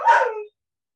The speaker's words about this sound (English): No barking. No.